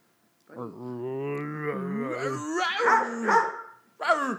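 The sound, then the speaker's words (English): A dog named Buddy vocalizes, a drawn-out, wavering whine rising into a few loud, sharp barks, then a brief final yelp after a short pause. “Buddy the dog. Buddy, we're doing something, if you don't mind.”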